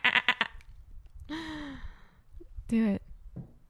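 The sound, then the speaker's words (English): A person makes a few quick breathy syllables, then two wavering bleat-like cries with clear quivering harmonics, imitating a goat, fairly loud. “You sound like a fucking goat just now.”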